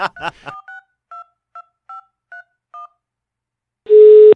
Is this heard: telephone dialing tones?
yes